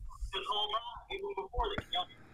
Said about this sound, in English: Dude, you sound like your audio's coming through a tin can, bro. Oh, yeah. How about now? Yeah, it does sound like a tin can with a string.